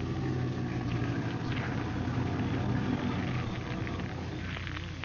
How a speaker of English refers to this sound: I'm going to run the car off the road into the bushes here so it can't be seen by anyone going by.